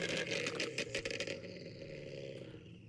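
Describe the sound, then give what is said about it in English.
A car engine idles with a steady low exhaust rumble, briefly revving in the first second with sharp bursts before settling into an even drone. “So this, I made the challenge a little harder in that these cars have different exhaust, little bit variance on that side, but it's the same engine.”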